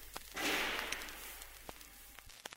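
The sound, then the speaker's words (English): Scattered sharp cracks of gunfire in station offices during an attack on the PBS studios, captured on a reel left recording, irregular and fairly faint, over a steady background hiss, with a louder rush of noise early on and a few quick shots near the end. “and it's just the sound of gunfire in the station offices.”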